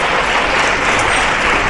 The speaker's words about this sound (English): Let's give all of our wonderful men and women of God a round of applause. Show them some love.